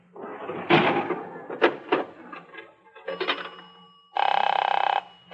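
A telephone bell rings in one loud, steady burst lasting about a second near the end, after a series of clattering mechanical knocks and thumps, as a call is put through from a phone booth. No one speaks.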